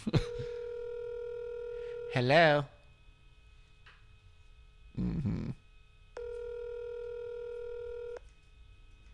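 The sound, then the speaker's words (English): A steady electronic phone tone sounds briefly as a button is pressed on a keyless phone, then a long two-second voicemail beep follows later, with short spoken bits from a voice in between. The tones are clear and fairly loud. “You run over there, reach over and grab a keyless phone and hit a button.”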